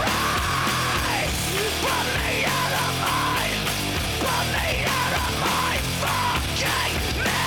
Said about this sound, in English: The scream, though, is real good. That scream, though.